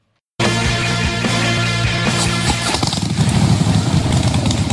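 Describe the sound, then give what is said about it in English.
A Harley-Davidson motorcycle engine starts abruptly and idles with a deep, throbbing rumble, then revs up into a rougher, louder roar toward the end. No one speaks. “Who needs a rev up for Harley Heaven?”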